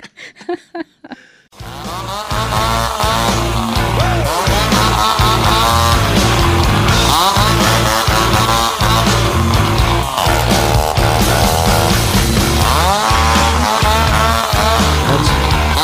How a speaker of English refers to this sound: Oh no, it's a chainsaw. That sounds like something you would do.